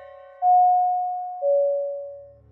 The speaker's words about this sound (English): I got out and brought the bag up to the doorstep, then rang the doorbell.